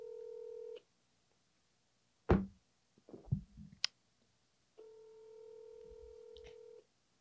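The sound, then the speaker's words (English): Electronic phone tones from dialing a call to Sabrina Morrissey, with no talking: a steady two-pitch tone, a sharp click, a quick cluster of short beeps, then another long sustained tone, clear. “Let me call Sabrina real quick.”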